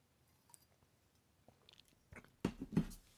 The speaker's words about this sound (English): I just took a sip of Vitica wine. Vitica from Arkansas.